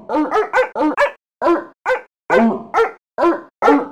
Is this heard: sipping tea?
no